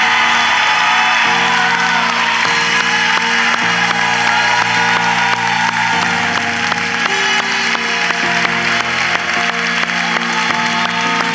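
A church audience bursts into sustained, loud applause for three people who serve the church, dense clapping filling the space steadily for several seconds while a low organ or keyboard holds shifting chords underneath.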